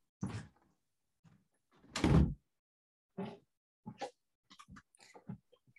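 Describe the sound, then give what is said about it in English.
A door is pushed shut with one loud thud, surrounded by fainter scuffs, clicks and rustling movement before and after. “So I'm going to shut my door because of my dog.”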